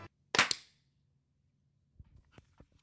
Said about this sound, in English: Okay, new clap sync. 3, 2, 1, go.